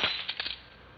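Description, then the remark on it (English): A drink glass is knocked over: one sharp crack, then a quick flurry of three or four bright clinks and rattles that die away within a second, with no voices. “you've upset your drink.”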